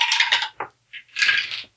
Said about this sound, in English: Well, I had to roll twice for my clumsy, and my second one was a snake eyes.